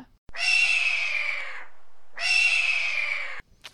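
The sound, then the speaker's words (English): Two long, raspy hawk screams, each slurring downward over about a second and a half, loud, separated by a brief pause with no talking. “Should we do a hawk fact?”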